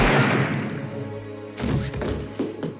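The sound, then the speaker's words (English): A loud shotgun blast in a film scene, fired by the character Annie right through a man, booms out and rings down into a low rumble. About a second and a half later comes a cluster of heavy, sharp thuds and impacts. “Annie blows a hole right through him. Great, great effect, by the way. Like the shotgun?”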